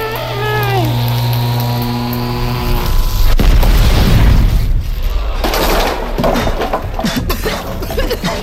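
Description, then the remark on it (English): A steady electric hum with harmonic tones gives way around three seconds in to a sudden loud blast as a chair explodes, followed by crackling, splintering debris and rumbling noise that continues to the end. “That chair! It's exploded!”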